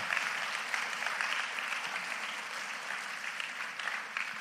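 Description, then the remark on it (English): A crowd breaks into a round of applause, dense steady clapping from many hands that holds at an even level throughout with no voices rising above it. “This is if we can give them a round of applause, praise God for that.”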